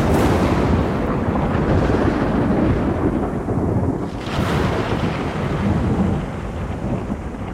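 A powerful thunderstorm far off on the horizon over a dark, angry sea, toward the capital city of Ani, with bolt after bolt of lightning, rumbles without pause, a deep, heavy roar that swells briefly about halfway through before settling back to a steady churning growl. No voices are heard.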